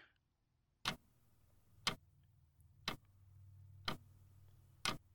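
A wall clock ticks steadily, five crisp, sharp clicks spaced about a second apart, fairly loud over a faint low hum.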